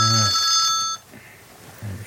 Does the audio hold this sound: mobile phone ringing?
yes